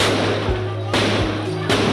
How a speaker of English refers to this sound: Gunfire rings out as protesters scatter.